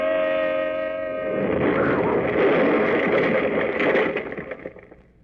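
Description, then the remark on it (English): A steady, buzzy car horn blares for about a second as a car swings out of line in city traffic, then a loud explosion bursts out and roars on as a rumbling, crackling wash of noise before dying away. “They started to swing out of line and blew their horn, and then it happened. This awful explosion.”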